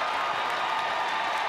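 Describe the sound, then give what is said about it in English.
A crowd at a Gophers basketball game applauds and cheers as it is urged to come to life, in a steady, dense wash of noise: a broad roar of many hands and voices that holds at an even level without distinct individual claps. “And the crowd being urged to come to life”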